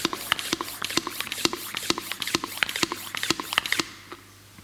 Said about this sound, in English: And it is just an ordinary balloon. I haven't done anything to it. And I'm conscious, because of all the care we're taking about germs and things, I'll use a balloon pump. I won't try and blow it up using my lungs.